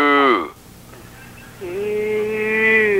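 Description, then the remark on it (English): A fairly loud human voice imitates a cow, holding a long, steady, drawn-out moo after a brief, higher-pitched vocal call and a short pause. “Oh, let's sound like a cow. Moo.”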